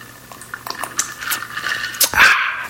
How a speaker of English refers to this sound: So before any further ado, we're gonna go ahead and take a sip for the big homie.